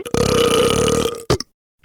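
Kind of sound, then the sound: human body sound, loud burp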